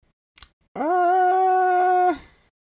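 A dog lets out a single long, steady howl that holds for over a second before cutting off, preceded by a brief soft knock. No one speaks.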